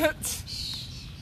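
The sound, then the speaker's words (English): A person whistles a short imitation of a bird call, a quick high chirp followed by a sustained high whistle, fairly quiet over a soft background. “I'm very good at bird calls, as you can tell.”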